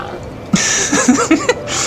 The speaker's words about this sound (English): Oh, what are those pigs doing? Oh, hang on, let me get up. Okay, I just had to trudge down to a further along bit along the coast here in Majula to get away from those weird pigs.